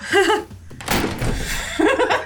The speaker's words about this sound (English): And I shut the door behind both of them.